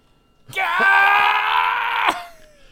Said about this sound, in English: just screams for a while.